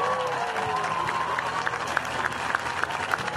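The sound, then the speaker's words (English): An audience applauds the event organizers, a steady wash of clapping with scattered sharper claps and a faint murmur of crowd voices underneath, sustained at a moderate level throughout. “Let's give them a big hand, you guys, a big hand.”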